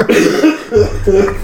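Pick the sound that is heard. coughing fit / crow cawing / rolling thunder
coughing fit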